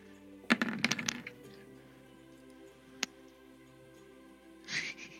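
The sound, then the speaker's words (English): A wooden door is struck and bursts open: sharp cracking and splintering wood right at the start, several snapping impacts in quick succession, then a lone crack a moment later and a rough scraping rustle near the end. “With that, the wood door splinters and busts open.”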